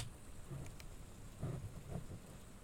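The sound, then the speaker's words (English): Steady rain hisses softly, with low rumbles of far-off thunder rolling underneath a couple of times. No one speaks, and the whole scene stays quiet and even. “All I know is that this rain sounds so good.”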